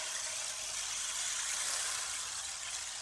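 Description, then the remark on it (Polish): A steady, unbroken rushing hiss of small pebbles and seeds pouring inside a rotated wooden disc instrument, imitating flowing water, with no pauses or voices, holding an even loudness throughout. “Imitując dźwięk wody.”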